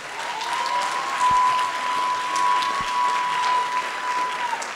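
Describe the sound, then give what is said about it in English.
A crowd at a live show of Come On, Son applauds steadily for several seconds, a dense wash of clapping with a few whoops, while a faint steady tone hums beneath and a couple of low thumps land midway. “Give me a nice round of applause for that, y'all.”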